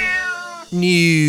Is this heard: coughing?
no